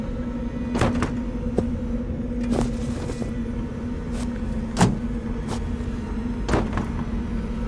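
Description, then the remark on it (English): A truck idles with a steady low hum while a series of clicks, thumps and rustles of a man moving around and climbing out of the truck sound, capped by a firmer knock near the end. “gets out of the truck to show me.”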